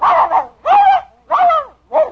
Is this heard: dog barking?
yes